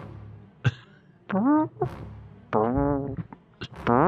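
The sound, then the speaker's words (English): Someone imitates a fart with their mouth: a sharp pop, then several buzzy, wavering blurts of varying length, fairly loud, with brief pauses between them. “That is the worst fart sound. You're usually really good at sound effects.”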